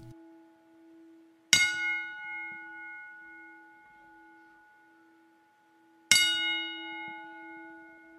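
A ceremonial ten-bell salute for Matt Sinister, after a moment of silence: two clear, slow strikes of a bell spaced several seconds apart, each clang ringing on with a long, sustained metallic tone in otherwise quiet surroundings.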